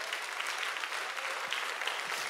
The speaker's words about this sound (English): It's time to outshout your doubt. Give him a hand clap of praise one more time.